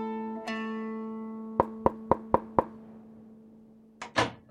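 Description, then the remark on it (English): Five crisp, evenly spaced knocks by a hand on the wooden door of a small hut, over a soft sustained musical drone, followed a moment later by a brief louder rattle, as if the door is opening. “She lifted her crinkly hand and knocked on the hut's door.”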